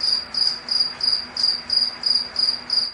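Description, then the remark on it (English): A cricket chirps in a steady, rapid rhythm, roughly nine shrill pulses in three seconds, clear over a faint low background hum, with no voices. “What noises does a cricket make?”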